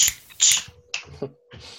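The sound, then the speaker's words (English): Five sharp finger clicks in an uneven, halting rhythm, attempting the snapping beat of the Addams Family theme. Each snap is crisp and fairly loud, with short gaps and no talking. “I failed at clicking so hard there.”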